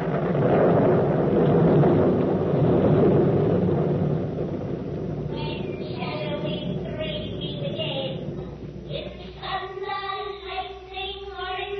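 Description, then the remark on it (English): A loud, rolling thunder sound effect for a stage play scene set in a desert place fills the opening seconds, then fades beneath voices that come in over a lingering low background rumble. “A desert place. Thunder and lightning.”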